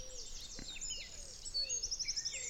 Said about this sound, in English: That was the wren.